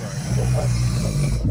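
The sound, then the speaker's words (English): Loud human snoring, made worse by a nose broken in an old BJJ injury: a rough, rumbling low drone that holds steady through one long inhalation, with a raspy, vibrating texture and no talking. “I think I always snored, but this probably made it worse.”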